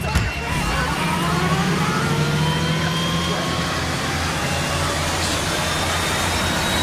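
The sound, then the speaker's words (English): In a stunt, a car engine whines as it speeds backward to avoid a head-on collision with an oncoming bus whose heavy engine rumbles, a loud, steady mix of motor drone and rising tones lasting the whole stretch. “So she like whipped the car in reverse when a bus was about to just head on collide with her.”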